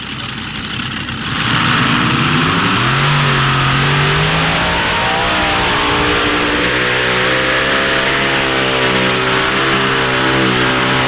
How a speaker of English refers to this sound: Here's your defending points champion, 2022 and 2021, the Ulmer Mafia, the Ulmers. Ty Ulmer comes out of Larchwood, Iowa. This tractor driven by three generations of pullers, Ty, Craig, and Kurt Ulmer.